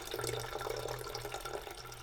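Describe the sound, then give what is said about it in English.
Garage Beer lager from a 12-ounce can pours steadily into a glass of rum, Sunny D and cherry American wild ale to make a shandy, a continuous gurgling, splashing stream that lasts the whole moment without pause, no voices. “Right now we just got a drink, but to make it a shandy, we've got to go ahead and add in our garage beer, lager beer.”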